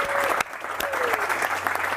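A crowd claps together in a dense, steady burst of applause lasting a couple of seconds, with sharp hand claps standing out over the continuous patter and a faint whistle rising briefly.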